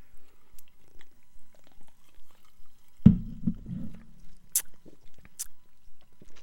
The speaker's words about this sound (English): But anyways, you want to take a little sip-a-roo, see what it tastes like? Yeah, let's do it. All right. Down the hatch. Cheers.